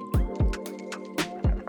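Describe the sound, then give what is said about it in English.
Liquid glugs from a bottle into a cup as someone tops off a drink, with four or five gurgling bursts in an uneven rhythm and no one talking. “Hell yeah, and I'm gonna top mine off.”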